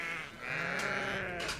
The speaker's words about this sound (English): It was also chaos in the tea room. A flock of 50 sheep had rushed through the door all at once.